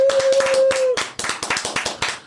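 A small group claps in a quick, steady round of applause lasting a couple of seconds, with dense overlapping hand claps at close range and a brief sustained tone near the start.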